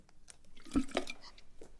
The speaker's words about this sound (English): Again, I'm just going to take a little sip.